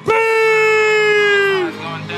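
Loud audience cheering at a Memphis show as a performer is called to the stage: one long, sustained whoop holds for over a second and a half before breaking off, with rowdy crowd noise continuing underneath.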